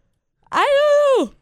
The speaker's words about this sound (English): As I yawn.